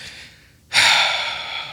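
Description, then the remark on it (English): A faint airy inhale, then after a brief pause a sudden loud, sharp gasp that stays breathy and strained for about a second, with no talking. “Did you hear the gasp?”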